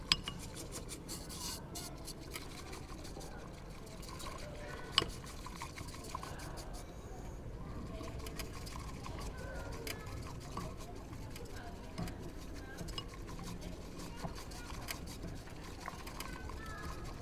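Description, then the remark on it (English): Water pours steadily into a small vessel to prepare a second matcha, a continuous liquid stream lasting the whole stretch, with a brief clink of utensils near the start. “Second one. Also around the same amount of water.”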